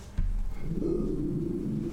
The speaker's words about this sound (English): That's such a funny growl. That's his, like, half growl. Like, he's seen someone and he's like, do I need to bark yet?